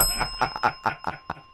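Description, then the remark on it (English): A small bell rings in a quick series of about six bright dings, moderately loud, with a few softer clinks between strikes. “Oh, I got a bell. Ding, ding, ding, ding, ding.”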